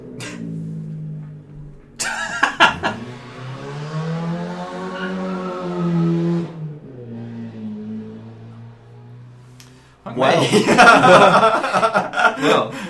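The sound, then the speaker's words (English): A car passes outside, its engine hum swelling and bending in pitch over several seconds before fading, followed by a louder rush of road noise near the end. “Alright, car.”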